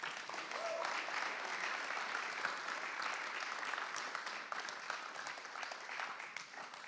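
An audience applauds steadily, a dense patter of many hands clapping at an even level for several seconds, with no voices standing out.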